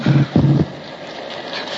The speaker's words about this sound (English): The engine stopped. Yeah. Yeah, she's drummed out.